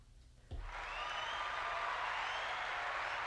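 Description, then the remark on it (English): After a brief quiet moment, a crowd bursts into loud, sustained applause and cheering that stays dense and steady to the end, with no talking. “The crowd goes wild.”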